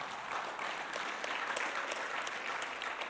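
An audience applauds steadily for a few seconds during a sermon, a dense, continuous wash of many hands clapping at fairly even loudness, with no voices rising above it.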